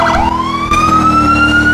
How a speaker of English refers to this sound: That's the Yelp siren. And that's the priority siren.